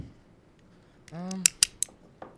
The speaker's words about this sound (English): Oh, great heavens! What was that? That was a revolver shot! A gunshot? No. From inside?